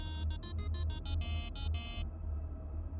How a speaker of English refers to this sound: Snow was falling slowly, and with it descended that muffled quiet that snowstorms often bring. My ringing phone sounded jarringly loud in contrast.